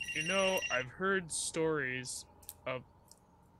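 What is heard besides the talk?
landline telephone ringing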